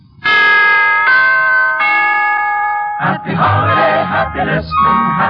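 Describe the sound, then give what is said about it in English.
The three-note NBC chimes ring out in a rising sequence as an NBC holiday wish, each tone bright and sustained, then a group of voices begins singing in a lively, bouncing rhythm. “To put it in musical form, here is a holiday wish from the NBC Chimes.”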